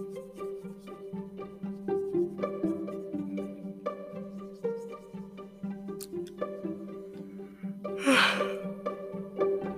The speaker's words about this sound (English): Maybe I don't know why I'm sitting over here yawning. I'm not sleepy. And I guess it's because it's like rainy or stormy outside.